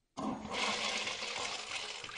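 A toilet flushes with a sudden loud rush of water that keeps roaring steadily, a broad hissing swirl without any voices.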